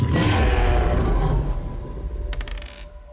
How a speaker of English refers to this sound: So you'll hear you the Tarrasque roars, and then Key3 roars at it in its mouth. And it's going to start trying to lift the mouth off of it. As this blast of air is just coming past you from this roar.